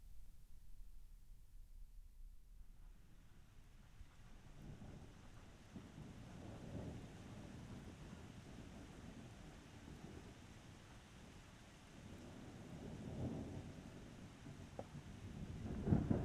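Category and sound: nature, rain with thunder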